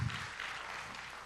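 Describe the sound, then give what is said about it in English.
Applause from a church audience during a service, a steady wash of many hands clapping at once, fairly quiet and even in level throughout the short stretch, with no voices standing out. “Come on, if you are, give him a good round of applause.”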